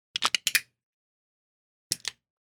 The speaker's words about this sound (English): LaCroix, too strong. LaCroix, what's going on with your cans? Start making them make a noise. Make them crumple more.